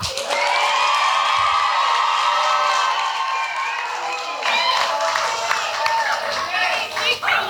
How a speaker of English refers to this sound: So you need to hoop and holler and cheer for your counselor for about 5 seconds on the count of three. One, two, three, go.